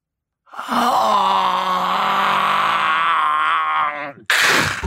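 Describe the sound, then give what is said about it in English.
A loud, monstrous groan from a meat clown leaning over the listener, drawn out for nearly four seconds, low and guttural with a steady rasping tone, cut off by a sudden harsh burst of noise at the end. “I could hear the groans, the dripping of the meat.”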